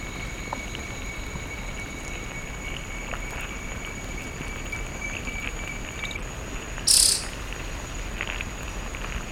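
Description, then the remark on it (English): Steady high insect trilling hums over a dense, rustling forest background around an army ant swarm, where several species of birds and insects gather, with one short, sharp bird call cutting in near the end; no voices. “So instead of an eerie silence or a narrow band of monophonic white noise, the multi-species assemblage around Ibercelli produces a rich and complex sound.”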